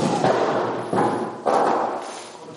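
Three dull thuds spaced about half a second apart, like a chair being set down and shifted on a hard floor at an open back door, each followed by a short rumbling decay.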